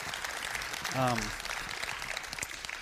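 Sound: round of applause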